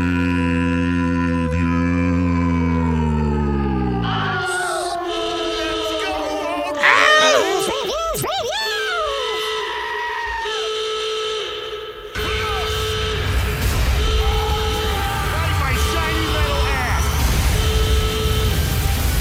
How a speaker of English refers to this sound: I do love the screaming goats.